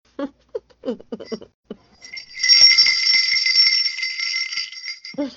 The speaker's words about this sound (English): All I keep thinking is Eric's gonna be like, were you ringing bells last night? Like you did last year. No, last year for We Wish You a Merry Christmas, he was like, what were you doing with the bells?